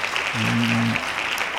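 Steady, dense clapping from a group of hands welcoming a guest, like a short burst of applause, running the whole time, with a brief low humming tone rising underneath midway through.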